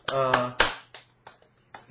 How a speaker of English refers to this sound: Golf clap.